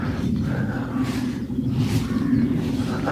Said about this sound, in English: In fact, I can see a plane. I wonder if you can hear that. That's becoming more regular again. A lot of last year, hardly any planes at all going over.